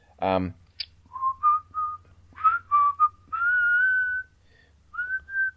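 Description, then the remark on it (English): Someone whistles a short melody in separate phrases of gliding, mid-high notes, ending with longer sustained tones. A brief burst of voice comes just before the whistling starts. “I can't name this tune. I can't whistle it to you.”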